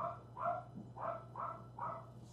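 Four barks from wolves in a steady rhythm, each short and mid-pitched, over a constant low hum. No one speaks.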